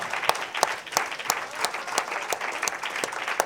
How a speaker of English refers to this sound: Give a clap offering to the Lord. Si podemos darle un aplauso al Señor.